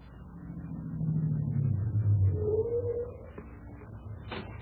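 A car engine rumbles as the car approaches, its low drone swelling for a couple of seconds before settling and cutting off as the vehicle comes to a halt. Nobody speaks.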